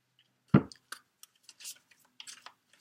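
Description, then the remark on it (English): Life Purpose Oracle deck cards being shuffled and handled: one sharp slap of cards, then a scattering of soft, irregular taps and papery rustles, with no voices. “Okay, let me get the Life Purpose Oracle deck cards picked for you, Aquarius. As I take in these energies while I shuffle.”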